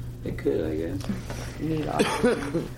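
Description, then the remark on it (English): A woman who has had a cough for about two months, now worse, coughs and clears her throat in a few rough, throaty bursts, mixed with murmured voice sounds and a steady low hum in the background. “Yeah, I've had a cough for about 2 months, but it's really bad tonight.”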